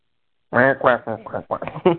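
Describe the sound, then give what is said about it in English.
A person imitates the squawk of the Penguin as played by Burgess Meredith: a quick series of loud, nasal, quacking vocal bursts, after a brief moment of silence. “He that weird penguin squawk that he would do.”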